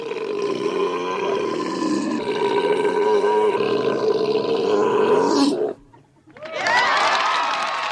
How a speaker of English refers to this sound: Well, I took the beep out and replaced it with a nice, healthy belch. So here's this story talking about good manners, and the page turn signal is a burp. An epic, huge belch.